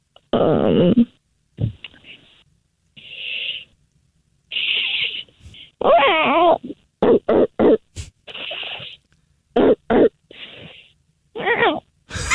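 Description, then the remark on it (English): Voices imitate a dog and cat fighting: strained yowls and howls, sharp bark-like bursts and repeated breathy hisses alternate in a rapid, chaotic burst of noises. “Oh boy, that was a vicious dog and cat fight.”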